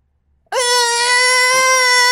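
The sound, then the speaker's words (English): A person imitates a squirrel's squeak with one sustained, high, nasal squeal that starts abruptly after a short silence and holds steady and loud for nearly two seconds. “Have you ever heard a squirrel just like squeaking?”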